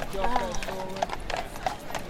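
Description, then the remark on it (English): Horse hooves clip-clop in a steady rhythm, each crisp strike clearly audible, while indistinct voices murmur in the background. “I'm trying to get a funny horse pun, but nothing's coming to me.”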